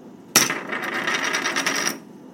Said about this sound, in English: Hey, did you hear that? Hear what? That, like, gunshot sort of thing. Yeah. Was that... Is that what it was? Maybe.